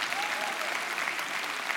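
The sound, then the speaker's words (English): A brief burst of light, polite applause from an audience, many soft claps blending into a steady, even patter throughout. “And identifying yourself, yeah, you can golf clap for that or what?”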